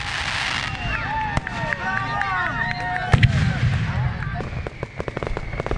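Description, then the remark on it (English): Fireworks pop and crackle in sharp, scattered bursts, with high whistling streaks rising and falling between the bangs, over a steady murmur of a talking crowd, at a city Fourth of July fireworks display at a ballpark at night. “oohed and awed along with the crowd as the night sky exploded with color.”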